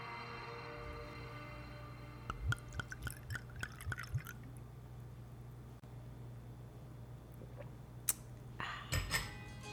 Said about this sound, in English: You want to know what I just did? What'd you do? I opened up the new wine that I received from Wine of the Month Club.